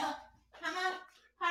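A dog barks loudly, letting out three quick, strained barks in a row, the middle one drawn out a little longer than the others.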